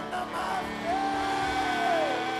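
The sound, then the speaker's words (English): A large audience shouts amen together, a loud, sustained wall of overlapping voices that swells slightly and holds for a couple of seconds. “Shout a bigger amen.”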